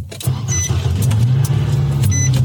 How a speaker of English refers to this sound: Put your windshield washers on. Yeah. Oh, it's the car's not on. Hang on 1 second.